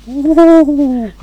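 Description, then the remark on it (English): A person imitates a pigeon with one drawn-out, hooting coo, sustained for about a second with a slight rise and fall in pitch, fairly loud. “Ooh, I'm a pigeon.”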